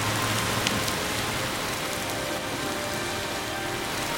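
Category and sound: nature, heavy rain falling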